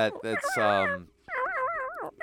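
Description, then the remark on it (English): A dog in a video game's dog ending gives a few quick barks, then after a brief pause lets out a long, wavering whine that rises and falls before trailing off. “Yeah, we just paused for a real quick second just so we can watch the dog ending real quick.”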